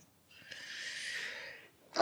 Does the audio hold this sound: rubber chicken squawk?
no